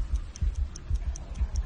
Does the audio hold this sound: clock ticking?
yes